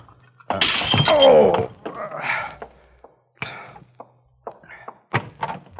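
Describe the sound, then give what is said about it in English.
A door is unlocked and pulled open: a loud rattling clatter with a brief creak, followed by several sharp clunks and knocks of the latch and frame. “Please, open the door, let me in.”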